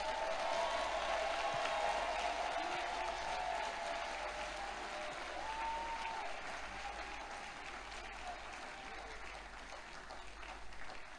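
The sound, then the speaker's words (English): A large crowd claps and applauds steadily for several seconds as a clap offering to the Lord, a dense, sustained roar of hands with faint cheering voices mixed in, easing slightly toward the end. “If you appreciate the Lord, give the Lord the loudest clap offering.”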